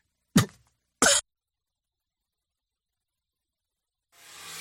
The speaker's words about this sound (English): Oh, nothing better than having a cough attack before you can hit the cough button. That's for sure. Sorry about blowing out your eardrums there.